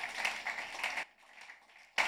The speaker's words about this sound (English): Give a good clap for offering unto Jesus.